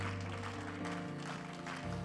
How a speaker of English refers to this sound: One more time, give him a hand clap of praise before you're seated. What a great God.